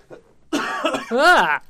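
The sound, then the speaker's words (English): A single loud cough, drawn out and strongly voiced with a rough, throaty tone, lasting about a second with no talking around it. “I'm going to cough because I'm a monster.”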